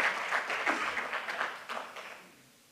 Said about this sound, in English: You can clap.